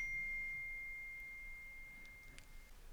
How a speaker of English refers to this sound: That rings a bell. My phone had a message come through.